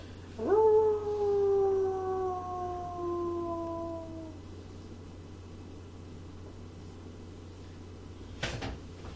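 A lone wolf howl, echoing out over the Rogue Valley, rises sharply, then glides slowly downward for several seconds before fading away, leaving a quiet background hum; a brief sharp knock sounds near the end.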